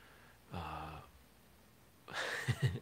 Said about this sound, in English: I'm gonna yawn and be rude. It's a crazy day.